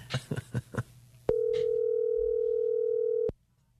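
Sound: phone call ringing tone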